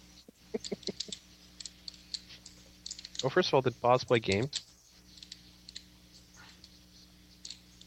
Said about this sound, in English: Just typing.